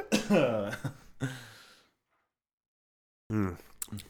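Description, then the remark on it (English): A man coughs in a rough, strained fit, several harsh bursts with raspy breathing between them. After a brief silence, a few more hacking coughs follow. “he's having a coughing fit now.”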